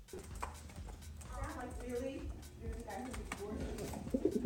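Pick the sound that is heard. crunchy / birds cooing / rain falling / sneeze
birds cooing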